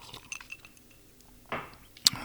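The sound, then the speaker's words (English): A few faint taps lead into a brief soft slurp as someone takes a little sip of a grown-up beverage, then one sharp, bright clink of glass rings out, with a short trailing shimmer; quiet overall, no talking. “Let me have a little sip of my my grown-up beverage.”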